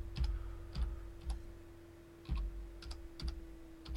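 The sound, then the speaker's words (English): Irregular bursts of typing on a computer keyboard as someone enters a website address, clicky keystrokes in short clusters with brief pauses, moderately quiet over a steady low electrical hum. “What am I typing into?”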